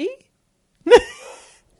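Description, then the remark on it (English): A single sharp dog bark bursts out near the middle, loud, its ringing tail fading quickly into quiet, with a short fragment of sound at the very start. “Shut the fuck up, dog.”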